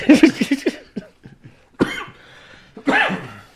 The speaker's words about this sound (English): Sorry for coughing in my mouth.